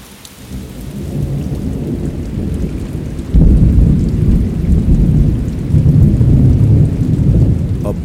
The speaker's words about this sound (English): Thunderstorm during the wet season in the Tambopata region of the Amazon rainforest, bordering Peru and Bolivia.